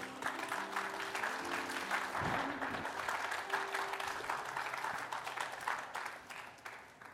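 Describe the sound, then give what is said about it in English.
A standing audience at a church service claps together as a clap offering to God, a dense, sustained round of applause that stays steady for several seconds before tapering slightly at the end, with a faint hum of organ tones underneath. “And while you are taking that stand, can you just give God a big clap offering?”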